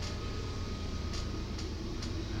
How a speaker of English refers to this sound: Can you hear it? Here comes the train.